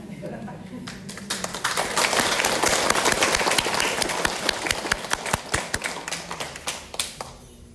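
Loud applause from a group, a dense burst of many hands clapping that swells quickly, then thins out into scattered individual claps toward the end.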